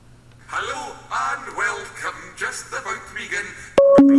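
A few seconds of melodic, voice-like sound are cut off by a sudden, loud electronic phone ring of an incoming call at the very end, a sharp two-pitch tone stepping downward.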